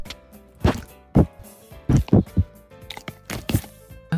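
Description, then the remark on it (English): A dog named Pixie licks at a phone and breathes heavily into it while a message is recorded in a kitchen, making a loud, irregular series of wet, thumping bursts and huffs with short pauses between, and no talking. “She just licked the phone. Yeah, so that was... And she heavy breathed.”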